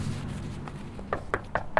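Someone knocks on a house door while door-knocking for an election campaign in Yakima: a faint tap, then four sharp, fairly loud raps in a quick, slightly uneven rhythm over a low, steady background rumble. No one speaks.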